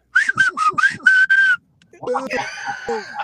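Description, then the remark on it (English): Six short, shrill, loud whistle blasts sound in quick, even succession, followed by a brief pause and then people talking. “Where's the whistle?”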